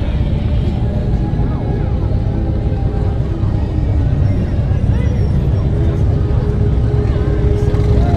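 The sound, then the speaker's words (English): A steady, loud roar of motorcycle engines rolls past without pause, a dense rumbling procession of bikes, with muffled voices mixed into the noise. A motorcycle club parading down Main Street in Jackson, Ohio, in the evening, with a big crowd lining the street. “This is the Apple City Motorcycle Club here in Jackson, Ohio. Their way down Main Street.”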